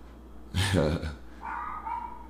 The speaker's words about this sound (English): I'm trying to figure out why these dogs is arguing.